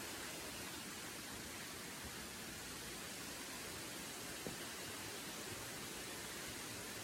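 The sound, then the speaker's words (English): Several waterfalls pour continually into Devil's Millhopper sinkhole, heard from the bottom of the boardwalk, with a steady, unbroken rushing hiss that stays even throughout, a constant wash of falling water with no voices and no distinct individual splashes. “There are several waterfalls that continually fall into the sinkhole.”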